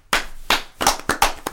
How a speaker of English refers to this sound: You clap your hands right now because you were a part of this.